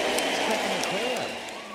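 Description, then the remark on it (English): A large crowd applauds at the MCG stadium as Matthew Lloyd arrives and claps along with them, a dense, steady wash of clapping that fills the whole moment, with a voice talking underneath it. “And he decides to clap himself along with the crowd picks.”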